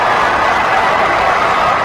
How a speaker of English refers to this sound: being drowned out by a crowd, I think around 20,000 people, screaming their heads off for the Pride of Broken Arrow at Lucas Oil Stadium on Saturday night. Listen to this.